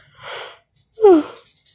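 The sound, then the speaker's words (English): A single yawn: a long, breathy intake of air, a brief pause, then a voiced exhale that slides downward in pitch and trails off. No one speaks. “Sorry for the yawning, guys.”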